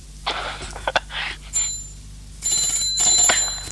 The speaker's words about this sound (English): See, they hear the phone's all sick sounding. Yes, it doesn't sound.